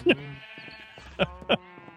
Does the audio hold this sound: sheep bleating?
yes